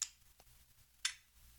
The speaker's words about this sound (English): Yeah, now look, I'm not going to even do this anymore with you because you're insulting the sound of the Legos.